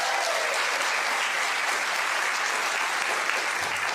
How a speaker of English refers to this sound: Yeah, Leah and Nat. Round of applause for Leah and Nat.